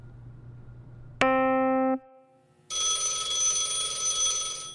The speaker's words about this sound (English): Phone's ringing again. You don't need to record everything. Just answer the damn phone.